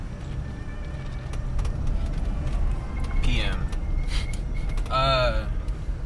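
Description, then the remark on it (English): A police SUV's low engine rumble and road noise roll steadily for several seconds as it drives past and makes a U-turn on Dodds, with people talking over it and a couple of brief rising tonal chirps. “SUV police officer doing a U-ey on Dodds.”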